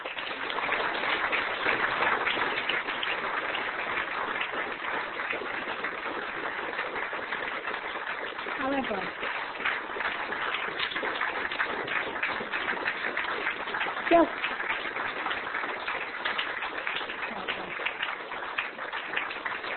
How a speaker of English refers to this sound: I was going to try and stop you before we went into the applause, but thank you, because we do all want to say some big thank yous to people